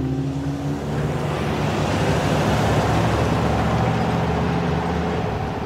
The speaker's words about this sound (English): A white pickup truck cuts across the bleak desert landscape.